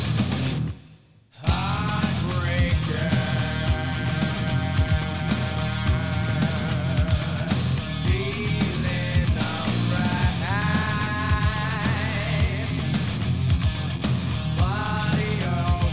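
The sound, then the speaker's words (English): A rock song driven by a distorted electric guitar riff with bending notes over steady drums and bass in a loose shuffle feel, loud and full, after a brief dropout at the start. “Good guitar tone, too.”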